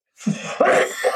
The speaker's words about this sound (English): I'm coughing again.